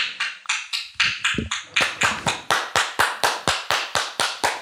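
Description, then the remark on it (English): A steady run of sharp hand claps, roughly eighteen in quick even rhythm, crisp and loud with no talking over them. “The listeners do not appreciate your clapping in the distance.”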